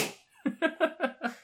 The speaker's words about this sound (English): Excuse me. Bless you.